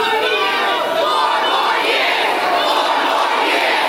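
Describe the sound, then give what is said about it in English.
At a Joe Biden rally in Manassas, Virginia, a large crowd of supporters chants "Four more years" in unison to drown out protesters. It is a dense, steady wall of many voices shouting together at high volume for the whole stretch, with no pauses. “His supporters tried to drown out the protesters with chants of 4 more years.”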